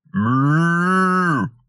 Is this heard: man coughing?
no